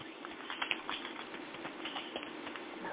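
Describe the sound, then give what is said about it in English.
Continuous papery patter of a deck of oracle cards being shuffled, a busy stream of soft flicks and riffles lasting a few seconds with no voices. “So I'm shuffling.”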